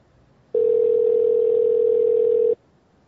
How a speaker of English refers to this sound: All right, here's a phone call.